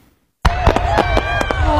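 sound effect, fireworks exploding

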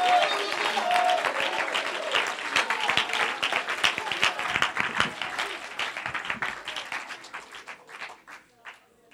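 crowd, audience clapping hands

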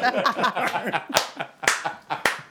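crowd, clapping

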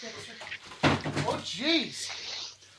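impact, objects being knocked over

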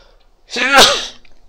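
human body sound, sneeze

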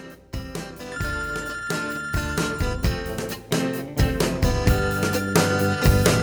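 signal or alarm, telephone bell ringing

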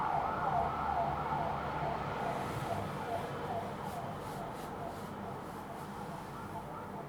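vehicle, police car siren passing

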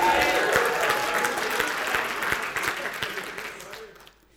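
crowd, audience round of applause

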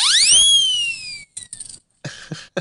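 signal or alarm, whistle being blown

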